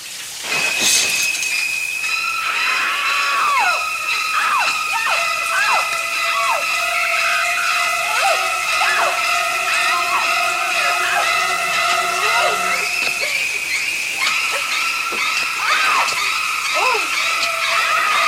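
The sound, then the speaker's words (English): Shrieking, stabbing high strings from a horror film's shower scene play in loud repeated bursts with sliding, swooping pitches, mixed with screams, building a frantic frenzy that holds steady for the whole stretch. “In case you've never heard the sound in that scene, this is what it sounds like.”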